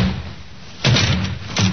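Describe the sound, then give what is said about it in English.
A police sergeant forces a door open to get at a suspect inside, with a series of loud, heavy bangs and crashes, following a brief stretch of quiet with no one speaking. “Take care of the door, Sergeant.”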